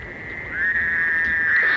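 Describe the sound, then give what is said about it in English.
A toad calls with a steady, nasal, buzzing tone that holds for nearly two seconds, rising slightly in pitch partway through. It is fairly loud, with no voices. “Their call is a short nasal sound, which we will hear now.”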